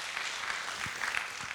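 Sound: church audience applauding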